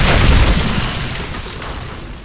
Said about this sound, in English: What happened? Why is there snow everywhere? Came down the chimney, it's okay.